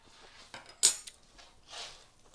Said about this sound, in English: These are mushrooms right out of a freaking jar. They better be imported from Greece. You better not be lying to me on that label. Just like my olive oil better be real. Sorry for the chewing.